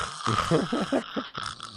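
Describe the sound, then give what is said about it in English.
A voice mimics the loud snoring of a man in the corner during a three-hour movie, a rough, rasping series of rapid pulsing snorts lasting under two seconds, fairly loud and harsh with a breathy hiss toward the end. “And dude, this guy was snoring so loud, I almost wanted to throw my water bottle at him.”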